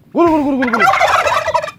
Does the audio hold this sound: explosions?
no